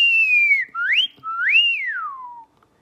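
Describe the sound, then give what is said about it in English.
A person whistles a clear, piercing tone, gliding down, then sweeping up and arching over in three smooth connected phrases with no other sounds. “So whistling can be really loud and clear and piercing because you've got this really nice tight space.”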